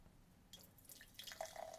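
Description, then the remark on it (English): Beer, a 7% alcohol Snapdragon, pours into a glass in a soft, steady gurgling stream that builds after a brief quiet start, with a faint rising fill tone near the end. The beer is very pale with a pure white foamy head and medium-sized bubbles. No talking. “And the pour?”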